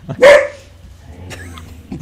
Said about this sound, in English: My dog is not happy about that. Jealous dog.